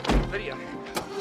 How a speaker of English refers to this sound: I stubbed my toe on the cab when I kicked the door. I think it's broken.